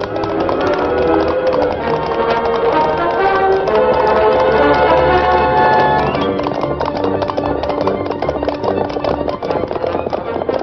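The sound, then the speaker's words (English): A loud cattle stampede: a dense, rapid clatter of galloping hooves pounding without pause over a thick, rumbling roar, growing sharper and more percussive toward the end. “They're stampeding now.”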